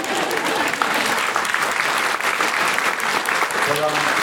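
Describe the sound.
A crowd applauds with steady, dense clapping that holds an even loudness throughout, and a faint voice surfaces briefly near the end.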